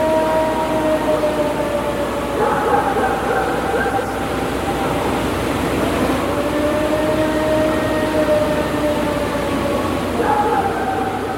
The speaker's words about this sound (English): You're going to hear a dog barking, which is a neighbor's dog on the property where this was recorded, likely responding to this howl. And the other sound, of course, is the howl. Let's hear it.